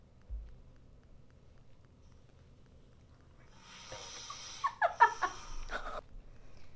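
Wind howling on a cloudy day in a rising, gusty whoosh that swells in after a few seconds of near quiet, with breathy surges and a few brief sharper flutters before it eases off.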